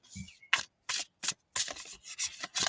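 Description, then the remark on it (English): A tarot self-care oracle card deck being shuffled by hand, heard as a quick series of about eight crisp, papery bursts with short gaps between them, fairly quiet, with no talking. “So let's give it a shuffle and see if there's anything good in here that is worth talking about.”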